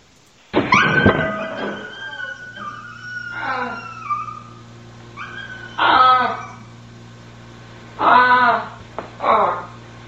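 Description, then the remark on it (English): A dog yelps sharply after being hurt in a fall, then lets out a series of high, wavering whimpers and whines in short bursts, loud, with brief pauses between them. “I fell down. I hurt my dog.”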